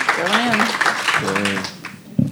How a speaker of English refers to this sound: You've got applause for something you have no control over.